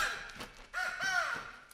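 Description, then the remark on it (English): Harsh, raspy crow caws, two or three rough calls overlapping in quick succession with strong, nasal tones and no talking. “Your screeching is attracting those crows again. Get away, you birds!”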